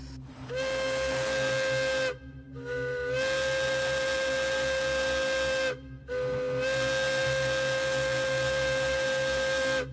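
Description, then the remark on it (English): A Hancock air whistle on a train, a type in use from the 1930s into the 1990s, sounds in loud, sustained blasts with brief gaps. It holds a steady tone with a slight upward bend at each start, carried over a breathy hiss and low rumble. “And finally, this is the Hancock air whistle, in use from the 1930s all the way up into the 90s.”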